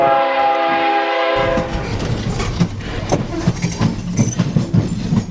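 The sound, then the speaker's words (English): A loud train horn blares steadily for over a second, then cuts off as rail cars rumble past with rhythmic clickety-clack clatter, no voices present; the train is taking Zimro Smith to Chicago. “Zimro Smith takes the train to Chicago.”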